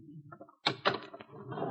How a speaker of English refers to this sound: The elevator came to a stop on the 34th floor.